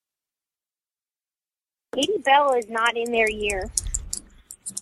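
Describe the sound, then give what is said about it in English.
Rapid, light keyboard typing clicks in an irregular patter behind a person talking, following a stretch of silence; the keystrokes are crisp but sit quieter than the voice. “You may hear some typing in the background here, ladies and gentlemen.”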